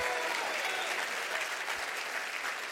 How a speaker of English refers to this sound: Clap your hands and say, that's for me.